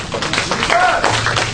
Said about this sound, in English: Amen. Can y'all give the Lord a hand clap?